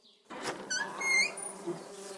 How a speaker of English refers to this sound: Oh, my. Busy little bees, aren't we? Oh, my.